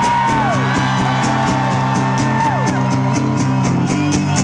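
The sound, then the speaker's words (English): A loud crowd cheers steadily, with yells and rising and falling whoops rising above a dense wall of noise. A regular rhythmic pulse runs underneath throughout. “It's appropriate to cheer loudly now, people.”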